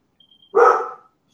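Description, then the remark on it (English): A single loud, sharp dog bark lasting about half a second before fading into quiet, with a faint high tone in the background. “Oh, we have another listener. So sorry. Oh, don't worry. What's your dog's name?”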